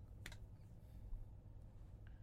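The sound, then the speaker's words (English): A single sharp click stands out early over a low background hum, followed near the end by a much fainter tick; no rapid run of clicks is evident. “Are you just clicking enthusiastically?”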